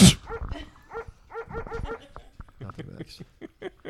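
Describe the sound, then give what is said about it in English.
A dog barks in a rapid string of short, yappy barks, pausing briefly before another quicker burst of barks and yips. “Yeah, my dog's an ass.”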